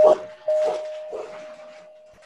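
Dogs bark in a few sharp, loud bursts, reacting to someone ringing the doorbell, over a steady ringing tone like a doorbell chime that hangs through the whole moment.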